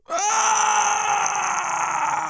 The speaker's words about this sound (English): He screamed.